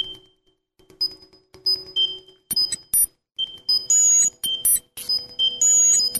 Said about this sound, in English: Obviously, you'll have to imagine what's happening here, but this is sort of bizarre, twitchy, sort of electronic music.